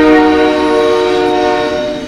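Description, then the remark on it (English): A train horn blares loud, a sustained harmonic blast held steady throughout as a train passes through a live train station in the afternoon, with a low rumble of the cars beneath it. “So I was talking about, we're at a live train station. So you're going to hear it.”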